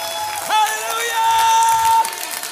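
audience clapping and shouting

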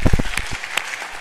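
audience clapping hands

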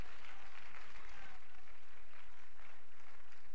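audience clapping in praise

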